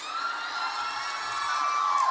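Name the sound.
audience cheering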